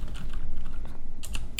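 Rapid clacking of loud computer keyboards, a quick irregular stream of sharp keystrokes close by, with a few louder bursts near the end and no voices.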